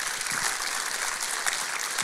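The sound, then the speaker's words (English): A dense, steady round of applause, many hands clapping together in a continuous crackling wash at even loudness for about two seconds, with no voices. “Round of applause.”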